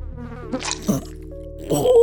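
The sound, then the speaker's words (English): A housefly buzzes steadily for about two seconds, a low droning hum with a rich, raspy edge that wavers in pitch and swells with short flurries of louder, scratchier buzzing. “Now the fly is in your mouth.”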